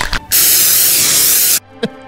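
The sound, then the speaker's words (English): A spray paint can lets out one loud, steady hiss lasting just over a second, with a brief rattle just before it and a short faint blip afterward. “Shake that can of paint and just spray it right in their face.”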